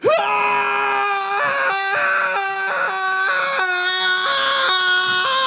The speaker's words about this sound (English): Okay, well, I'm just kneeling on the ground screaming. I know it sounded like I was charging, but I'm just crying right now.